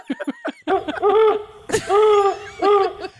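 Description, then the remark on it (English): A pet parakeet calls out in quick short chirps, then breaks into several loud, drawn-out warbling squawks, with one sharp screech in the middle and no talking. “Can you put your pet parakeet back in the car?”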